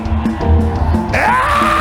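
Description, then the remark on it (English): A crowd of voices shouts and cries out together in praise of Almighty God, hands lifted, in loud, overlapping bursts, with one rising, sustained yell breaking through near the end over a dense, echoing wash of noise. “Why don't you lift up your hands and scream like your voice is yours and praise Almighty God?”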